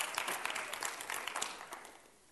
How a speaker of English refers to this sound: That's okay. You can clap.